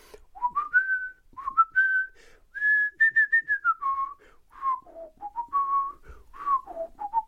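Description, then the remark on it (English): Someone whistles Song of Storms from the video game Ocarina of Time, a lilting melody of clear, pure notes that rise and fall in quick phrases with short pauses between them, alone with no talking. “Ocarina of Time, Song of Storms in particular.”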